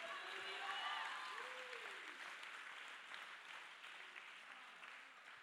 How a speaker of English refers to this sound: Somebody clap your hands and shout hallelujah.